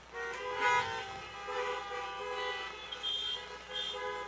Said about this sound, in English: So if you'd plan to do that, are you hearing us out there? Honk your horns.